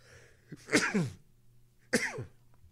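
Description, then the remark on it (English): A stifled sneeze: two short, sharp, muffled bursts about a second apart, the first slightly longer, with no talking around them. “Yep, that was me trying to stifle a sneeze. It did not work.”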